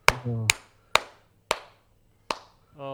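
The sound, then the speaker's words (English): One person claps slowly and deliberately in sarcastic applause for Bobby Lashley's backstage promo, about five or six sharp claps spaced half a second or more apart, with a brief hum-like voiced tone at the start and end. “Because the clap wasn't slow enough.”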